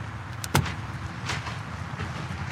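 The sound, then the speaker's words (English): A sharp mechanical click of a car being unlocked, followed by a softer clunk as a car door opens, against a low background hum with no talking. “You'll have to unlock it”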